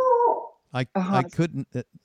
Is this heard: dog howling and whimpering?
yes